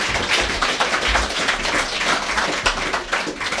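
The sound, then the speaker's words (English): A crowd applauds loudly and steadily at a venue in Timaru, New Zealand, dense overlapping claps for several seconds with no voices above them. “Give yourselves all a massive round of applause turning out tonight.”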